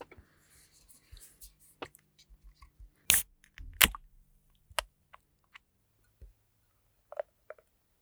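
A West Coast-style IPA, an amber-coloured beer, being opened: two loud, sharp snaps land close together in the middle, surrounded by scattered soft clicks and taps, with no talking.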